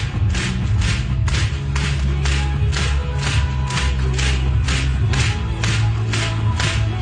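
A big crowd claps in unison to a steady beat, sharp loud claps about three per second, riding over thumping bass music and a continuous roar of the audience.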